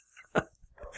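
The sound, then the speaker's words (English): A dog, Rio, gives one short, sharp bark, fairly quiet, with faint background noise before and after it. “And our dog Rio wants one too, it sounds like.”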